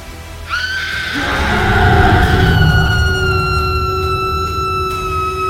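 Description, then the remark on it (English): A werewolf howl bellowing through Grimwood under a full moon: one long, loud, rising cry that settles into a steady held pitch for several seconds, layered over a deep rumbling backdrop. “A howl bellowed through Grimwood. A werewolf.”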